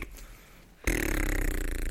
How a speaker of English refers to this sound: and on those fart sounds